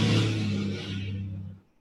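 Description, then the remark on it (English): A loud truck engine roars by outside, a deep steady rumble with a rushing hiss that gradually fades as it passes, then cuts off. No one speaks. “Yeah, that whole thing about the little dicks and big trucks thing is very true.”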